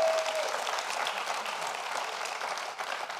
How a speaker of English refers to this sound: Give yourselves a great big hand clap.